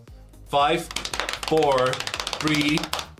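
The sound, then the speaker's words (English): A crumpled paper list crackles and rustles as it is pulled open, a rapid, irregular run of dry snaps, while a voice sounds intermittently over it. “This is the most scrumpled up piece of paper yet. I'm excited. I'm still unraveling it.”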